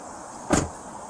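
A single short thud, like a car door, as a police officer gets out of his car during a routine traffic stop, recorded on body cam footage, over a low steady background hum with no talking.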